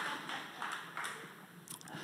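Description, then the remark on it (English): Quiet sipping of water: a few soft, wet slurps and swallowing sounds spaced irregularly over about two seconds, with no talking. “I'll have a sip of water, thank you.”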